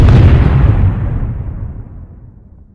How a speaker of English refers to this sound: I lit the fuse and held the stick in my hand, giving the vamps a chance to get close. As things started to go black, I tossed the stick. The explosion was wondrous.